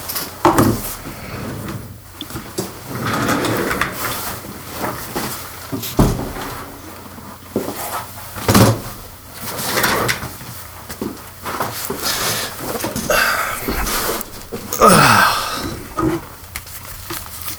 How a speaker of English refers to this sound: One, can you hear the squeakiness in my chair? I can. It's annoying as heck, isn't it? It is. Okay, I think I'll get a different chair.